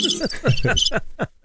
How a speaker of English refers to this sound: I hear crickets. I hear crickets.